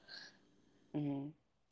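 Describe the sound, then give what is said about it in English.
A single short sneeze, fairly soft, with a breathy burst followed moments later by a brief voiced vocal sound before silence. “Excuse me. God bless you.”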